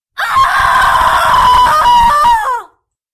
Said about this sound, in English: Across the sea, in a special cell designed by the Brothers of the Order of the Dagger and Cross, a confused demon awakes, and before she blinks twice, knows she has been tricked. Her screams echo throughout the bowels of the abbey.